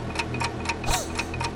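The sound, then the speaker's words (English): A game show 60-second countdown clock ticks steadily at a quick, even pace, each tick crisp, with a brief swelling whoosh midway through and no voices. “All right, for all that money, your clock starts now.”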